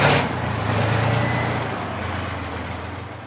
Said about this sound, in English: The hulking armored mine clearer lurches into an open field.